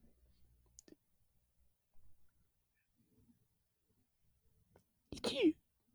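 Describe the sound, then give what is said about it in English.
After a few seconds of near silence with faint clicks, a voice lets out one loud, exaggerated fake sneeze as a joke, a sharp burst trailing off into a falling vocal tone. “I was hoping that your actual sneeze would have come in, so then my joke one is staying in there.”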